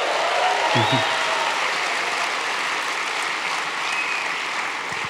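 A large audience applauds steadily, a dense, even wash of clapping that holds at full volume throughout, with a few faint whoops rising over it.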